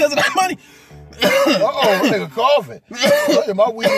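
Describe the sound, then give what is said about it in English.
A man coughs after smoking weed, in loud, raspy, throaty bursts, broken by a short quiet gap before another long spell of hacking that carries a strained, voiced edge. “Nigga coughing.”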